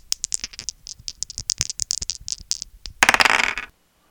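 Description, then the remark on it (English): Dice clatter in a quick, irregular run of sharp, bright clicks, then a dense rattling burst as a handful tumbles together before stopping abruptly. No voices. “If you need to borrow dice when your 20th level magic user casts Fireball, then you might be playing it wrong.”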